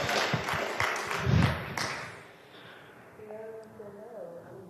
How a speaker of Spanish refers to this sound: Dale un fuerte aplauso al Padre, al Hijo y al Espíritu Santo. Te alabamos, Señor.